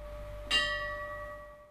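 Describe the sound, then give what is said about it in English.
A single toll of a church bell at St George's Anglican Church in Tauranga, during a memorial service for about 60 men who died in a battle, rings out, its bright, layered hum lingering and slowly fading over a soft background hum, with no voices. “The bell rang out 60 times for the approximately 60 men who died during the battle.”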